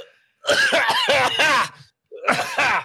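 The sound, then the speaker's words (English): Two loud bursts of harsh, voiced coughing from allergies, a longer fit of several hacks followed by a shorter one after a brief pause, with no talking. “You try to cough me?”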